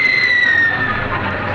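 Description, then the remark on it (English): A Japanese "screaming Mimi" rocket shell, with a tail adjustment that cuts the wind, screams overhead: a shrill high whistle sliding slowly downward in pitch for nearly a second, over a loud, steady rushing rumble that carries on after the whistle fades. “Just a screaming Mimi. Got some kind of a tail adjustment that cuts the wind and sort of screams.”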